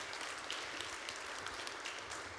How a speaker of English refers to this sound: So give Zach a round of applause.